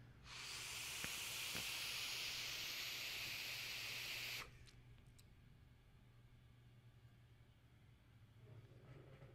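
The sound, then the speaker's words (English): A steady hiss of vaping Yig e-liquid from a new mech mod runs for about four seconds, then cuts off sharply, leaving quiet room noise and a low hum. “Cracked open a bottle of Yig. I got it in a dope new mech mod, which we're going to talk about in just 1 second when we get to what I've been vaping.”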